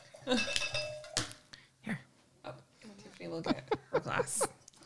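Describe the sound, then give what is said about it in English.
Whiplash wine is poured into a glass amid a few bright glassy clinks and rings, while a voice talks intermittently over the pouring. “I'm pouring and trying to talk at the same time.”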